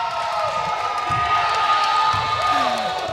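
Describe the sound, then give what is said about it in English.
A loud, sustained crowd cheer at a game after a shot by player Lund fills the whole stretch, a dense roar of many voices with scattered whoops and shouts rising above it. “Listen to the crowd, folks.”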